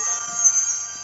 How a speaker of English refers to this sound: Ooh. What was that? That was my Back to the Future notification tone for text message.